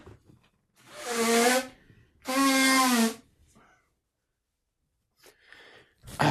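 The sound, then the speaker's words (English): Two loud, honking nose blows in quick succession, each lasting under a second with a breathy, slightly whistling tone, followed by some faint rustling and a short sniff. “Let me give a real quick blow.”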